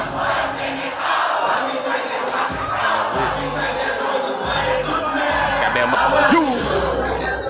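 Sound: concert crowd cheering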